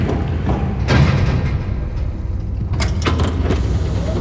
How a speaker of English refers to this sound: There's a button on the ground. If I tap it with my heel... Look! The secret elevator rising up from the marble.